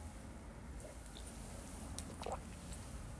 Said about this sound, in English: Let me sip some of my coffee real quick.